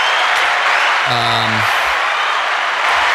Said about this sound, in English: Give it up for the list. Let's get a little applause.